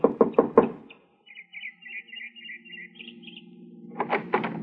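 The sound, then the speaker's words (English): Four quick, sharp, loud knocks on the wooden front door of a small house, followed by a pause with faint sustained tones before a few more knocks near the end. “I got her home address and knocked at the door of her small house 15 minutes after she arrived home that evening.”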